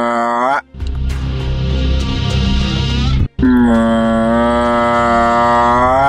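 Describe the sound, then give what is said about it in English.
A harsh electronic musical sting from the Torchwood season 3 soundtrack: loud, buzzy synth tones with thick, rich harmonics, held in three sustained blasts separated by two abrupt cutoffs, with no voices. “There are constant, those little stings that always kick in, like that.”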